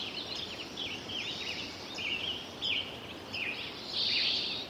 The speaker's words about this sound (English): Now we're coming up on 2009. Spring's occurring 2 weeks earlier. Bird populations are beginning to thin out.